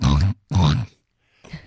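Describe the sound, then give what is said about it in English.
Two loud pig-like grunts in quick succession, then a softer third one after a short pause, apparently a person's voice imitating a pig. “That's a pig.”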